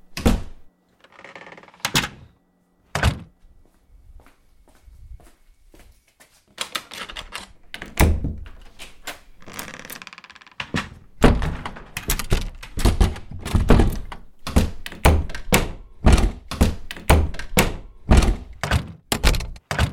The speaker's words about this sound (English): So I'm going to show you three different doors and how they sound differently. A big deal is how doors sound when they shut.